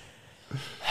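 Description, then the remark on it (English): A person takes a sudden, sharp, deliberate intake of breath after a moment of near silence, its airy hiss swelling louder toward the end. No one speaks. “I just hit manual breathing.”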